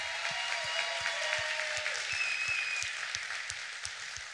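A church audience applauds steadily, a dense wash of many clapping hands holding at a moderate level throughout before easing slightly toward the end, with no voices rising above it.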